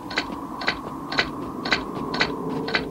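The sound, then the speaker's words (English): A cartoonish footsteps sound effect: six evenly spaced, crisp steps at a steady walking pace over a constant low background hum, with no talking. “Well, and then this whole moment here of trying to figure out what's going on is kind of broken by these stupid footsteps that T-Bob makes throughout the whole episode. Mm-hmm. This sound effect kills me.”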